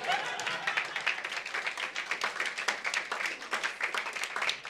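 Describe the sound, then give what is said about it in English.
An audience applauds steadily for several seconds in appreciation of the speaker's son, a dense crackle of many hands clapping that holds fairly even in loudness, with a faint murmur of voices mixed in. “But that, some of you are not clapping.”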